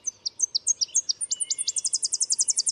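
tennessee warbler song

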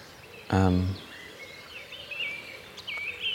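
birdsong

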